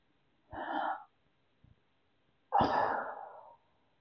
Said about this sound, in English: One, take a deep breath.